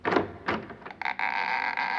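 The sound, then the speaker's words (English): A kitchen door in a grand apartment swings open: a couple of soft bumps and rattles, then a long, steady creak of the hinges drawn out to the end, moderately loud. “Here we are. The kitchen door.”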